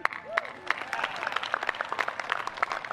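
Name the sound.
audience applause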